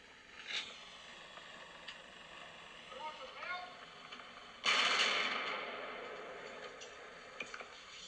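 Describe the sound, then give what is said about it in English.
A single loud gunshot cracks out midway and rings off in a long, fading echo, preceded by a few faint pops over a muffled, hissy old news recording of the shooting from the observation deck of the University of Texas Tower. “And then I was like, oh, they're shooting.”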